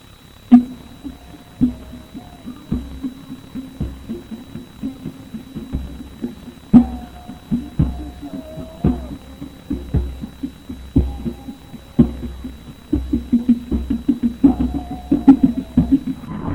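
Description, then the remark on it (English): Muffled drumming thumps in a steady rhythm while a faint wavering voice sings over it, the beats growing quicker and denser toward the end, with a thin constant hum behind. Captured by a voice-activated recording in the middle of nowhere with no people, music or loudspeakers around; it speeds up as someone opens a car door. “And when I get close to the door and start to open up the door, the drumming and singing speeds up so that they can finish before I get in the car”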